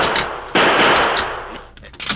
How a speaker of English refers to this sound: Shoot the lock off. Do something. Sure, sure. Stand back. I'll shoot the lock.